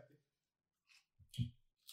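Two or three short, crisp crunches of potato chips being bitten, each a brief burst of crackly noise separated by pauses, the middle one heaviest and loudest.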